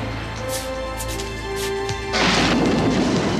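Barricades are smashed through: steady ringing tones give way to a sudden, loud crashing roar of breaking debris that rumbles on without pause until the end. No one speaks.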